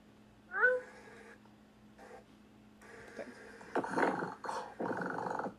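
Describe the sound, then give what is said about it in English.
A person imitates a cat, giving a rising meow up front, then a few softer mews and a stretch of rough, rattling purr-like growling toward the end, moderately loud. “I really liked how there were meows and there were purrs, and I don't know how you purred that authentically.”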